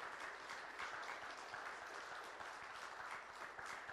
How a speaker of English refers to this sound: Can you guys give these people a round of applause, please?